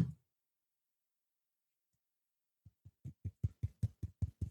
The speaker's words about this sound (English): Should I tap my callus so you can hear it? Do your best, yeah.